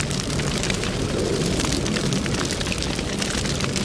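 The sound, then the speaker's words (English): A large fire roars steadily, with dense crackling and popping scattered throughout over a deep, continuous rumble. It's loud, with no voices. “It sounds like something burning, like a forest fire or something. Like yeah. There's a lot of crackling.”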